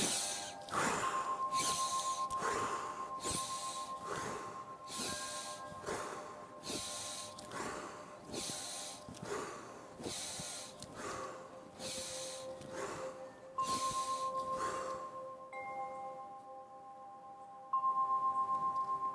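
Rapid, forceful breaths of a fire breathing exercise pump in a steady rhythm, each sharp inhale and exhale a loud hiss, repeated over a dozen times while a faint steady tone hums underneath.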